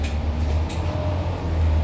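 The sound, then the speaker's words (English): A steady low rumble of a vehicle engine, like riding inside moving city bus number 2351, with a constant droning hum and faint rattly interior noise, no voices. “So as we're in motion, we're at bus stop number 6092”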